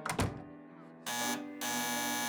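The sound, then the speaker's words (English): A dull thunk, then a harsh, steady electric buzz from a door intercom kicks in about a second later and holds loudly, briefly thinning before surging again to the end. “Could you buzz me in?”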